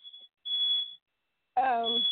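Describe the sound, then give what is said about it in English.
Home smoke alarms, set off by cooking in the kitchen, sound a series of shrill, high-pitched beeps, loud and steady, separated by short gaps, with a brief burst of voice cutting in over the last beep. “Our smoke alarms just went off, and hopefully those will go off soon.”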